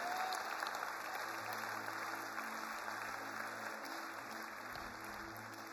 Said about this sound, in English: I will back your word up when you're using it for the glory of the kingdom of God. Give God one more hand clap of praise.